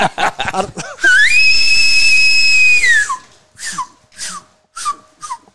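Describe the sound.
A person imitates an elk bugle: a few rough grunts, then a loud, sustained high-pitched whistling note lasting about two seconds, followed by four short, breathy descending chirps.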